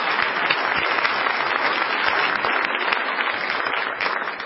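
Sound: audience applause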